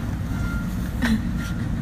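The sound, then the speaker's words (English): A train rolls past in Chicago with a steady, heavy low rumble, and a brief metallic squeal rises partway through. No one speaks. “Lots of trains in Chicago.”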